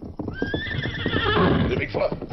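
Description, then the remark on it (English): A horse named Silver lets out a loud whinny that rises and then trembles for a couple of seconds, with a busy clatter of hooves underneath. “Good thing we not unsaddle horses yet.”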